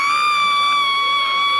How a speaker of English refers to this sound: The shouting was from a woman who just hit the jackpot.